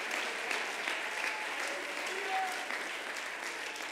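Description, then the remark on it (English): An audience claps their hands to praise the Lord, a dense, steady wash of applause filling the room for the whole stretch with no pauses, fairly loud and continuous. “Clap your hands and give the Lord some praise in this room.”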